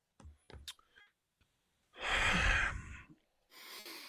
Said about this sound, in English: That hard breathing, girl.